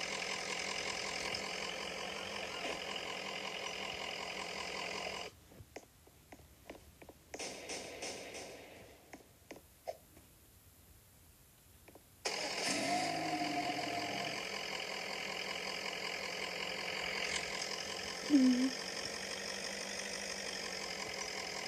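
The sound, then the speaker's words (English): A video game car, just spawned at JoJo's, idles with a steady, droning rumble, cuts to a quieter stretch partway through, then returns at full level. No one speaks. “And I just have to spawn this car.”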